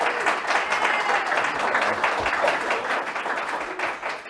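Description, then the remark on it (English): A live audience, many of them Texas activists, applauds enthusiastically as Texas State Senator Bob Hall is welcomed to the show, dense steady clapping from many hands, sustained throughout with no pause. “I will just tell you, my very fine friends, the reason that you're hearing that kind of enthusiastic clapping is because many people who are here in the audience today are real activists in Texas”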